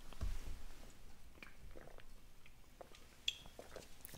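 food or drink, sipping an energy drink

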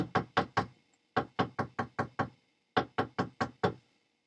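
impact, knocking on a door

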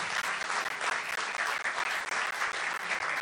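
crowd, audience clapping hands

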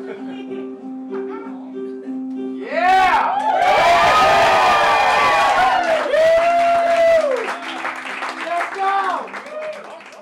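crowd, audience cheering

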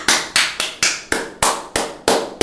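human body sound, hand clapping demonstration

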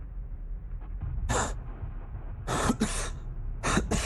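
human body sound, heavy coughing

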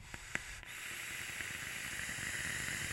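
machine, vape atomizer coil crackling

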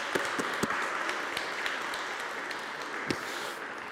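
crowd, audience applauding

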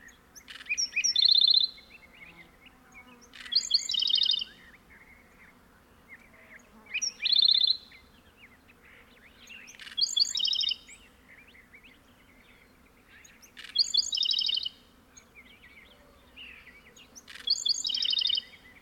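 bird, black-throated sparrow song

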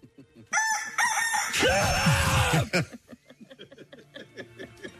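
bird, rooster crowing

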